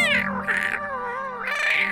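A cat named Meowster meows insistently, two long, wavering cries, the first rising and falling, the second starting high, with a low droning hum underneath and no talking.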